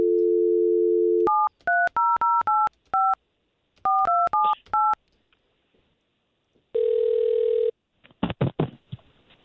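A steady dial tone, then about ten quick beeping keypad tones punched in two bursts, followed by a single long ringback tone and the clatter of the call being picked up, as a radio station calls a number given to them.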